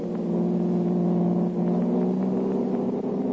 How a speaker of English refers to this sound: Jumping into his own car, the Blue Beetle gave chase until out on the river road.